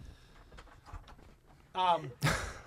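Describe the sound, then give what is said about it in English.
Faint, soft footsteps shuffle, then a short pitched creak and a sharp, loud thunk as a door is locked and the lock catches. “And so, I know, I locked the door. Hold on.”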